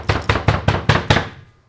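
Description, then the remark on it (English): Six quick, evenly spaced knocks, fairly loud, imitating something knocking on a door at home, then a brief fading ring. No one speaks. “You could have just said you heard something knocking. Nah, I want to get the sound effects.”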